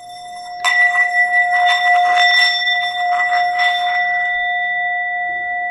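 A yoga singing bowl rings with a steady, shimmering tone and several bright overtones, swelling in pulsing waves as it's played, then humming on evenly to the end.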